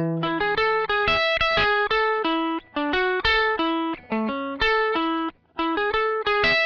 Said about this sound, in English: So this is what my friend played me. He played me back my guitar part.